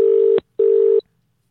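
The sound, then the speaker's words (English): A telephone ringback tone sounds twice as a call is placed to a law firm, a steady electronic buzz lasting under half a second each time with a short gap between, loud, with no voices. “Answer the phone, goddamn lawyer.”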